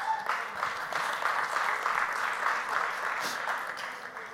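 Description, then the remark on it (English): An audience bursts into sustained applause for God's promise to care for them through Jesus. Many hands clap in a dense, steady wash that holds strong for several seconds before tapering slightly at the end. “You can clap for that.”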